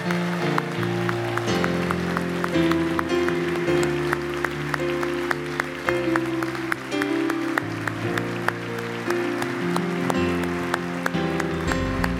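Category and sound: crowd, audience applauding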